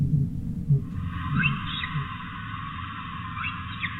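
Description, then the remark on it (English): Orca whistles recorded during a whale acoustic survey: a few short, rising tonal sweeps, moderately faint, coming in two small clusters over a steady underwater hiss and low rumble, as the orcas move around in the south of the survey area. “And finally the whistle of the odontocetes, the orcas, moving around quite a bit in the south.”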